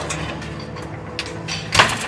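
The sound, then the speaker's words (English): The back door of a restaurant in Moscow opens with a brief scraping whoosh near the end as a young employee in a dirty apron exits into a dark alleyway on a cold night in 1957, heard against a steady low ambient hum with no voices. “In a dark alleyway, a young employee in a dirty apron exits out the back door.”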